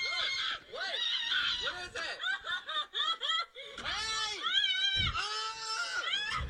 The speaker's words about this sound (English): Like, so she's obviously screaming like murder, like screaming murder. Like, you know, everyone's got to hear screaming murder once in their life, bro. But how she reacts is crazy, man. So this is her reaction.